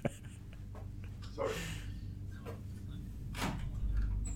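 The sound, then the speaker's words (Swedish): A door is pulled open after a knock by cleaning staff, with a couple of soft scraping, rustling swishes over a steady low background hum; no one speaks. “nu knackar det på dörren här, det är någon städning.”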